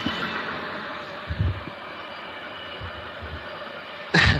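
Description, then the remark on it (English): A loud, continuous train rumble with a harsh metallic grinding texture, low thuds pulsing underneath, ending in a sudden bright burst of screeching noise. “This train is going to be loud.”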